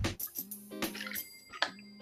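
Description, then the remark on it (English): Wet, liquid sounds of someone sipping water, with a few soft slurps and drips followed by a brief swallow, heard alone with no talking. “Excuse me, let me go ahead and take a little sip of water.”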